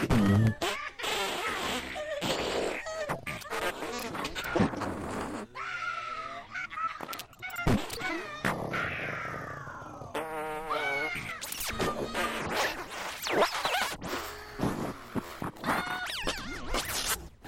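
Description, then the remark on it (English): A loud string of buzzy, sputtering fart sounds follows one after another, some short and rasping, others drawn out and wavering in pitch, with no talking. “Enjoy the lunder of wonderful sounds of farts, as requested by a Brew Monkey.”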